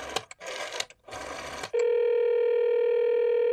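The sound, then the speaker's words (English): Several short, noisy bursts of an old iPhone dialing a call to an office, then a steady, unbroken electronic phone tone that holds at an even level to the end. No one speaks. “I'd better call my office and make sure I'm not missing anything important.”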